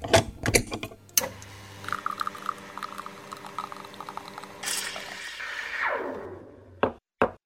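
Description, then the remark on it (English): An espresso machine brews a shot: a few sharp knocks, then a steady buzzing pump drone with trickling liquid, a rushing hiss that slides downward, and a couple of final clicks. “And with that, let's head over to the espresso machine and brew up another leadership espresso shot.”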